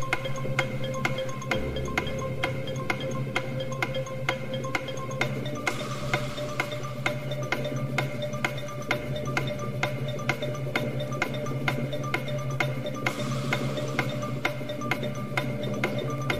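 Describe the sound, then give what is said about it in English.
A game show countdown clock ticks steadily and evenly over a sustained, droning musical backing, the regular clicks continuing throughout with no talking. “Start the clock.”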